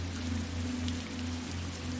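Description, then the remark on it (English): Steady, even rain from a storm hisses without pause through the whole clip, with a constant low hum droning beneath it and no voices. “The soft analog crackle is the perfect accompanist for the sounds of the storm.”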